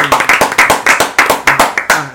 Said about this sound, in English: so give him a hand of applause. Come on, yeah. Clap for him.